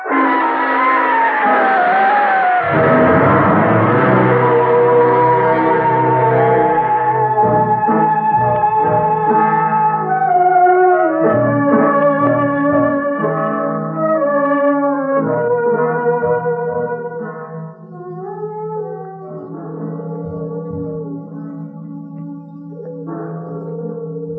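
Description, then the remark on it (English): Several temple bells ring at midnight on palace grounds in overlapping, reverberant tones, their long metallic partials layering and fading into one another at a steady, fairly loud level, with no voices present. “Temple bells always go off at midnight? Yes, they ring for the souls of those who entered this palace grounds and were never seen again.”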